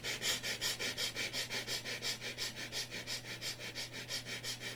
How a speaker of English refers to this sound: Keep looking into the space and start breathing short and quick. Gentle, playful breath.